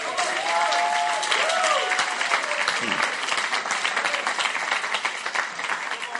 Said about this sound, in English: What a blessing. What a blessing. Clap for yourselves.